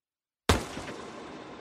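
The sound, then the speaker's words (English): A single loud gunshot cracks out of silence, a sharp bang followed by a long, echoing tail that slowly fades away. No voices are heard. “Single gunshot.”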